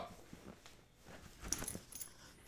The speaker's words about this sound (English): Oh, okay. Alright. Dog climbed on you.